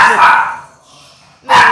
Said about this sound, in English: You think that was a pit bull barking? Hell no, it's not, y'all. It's Moose.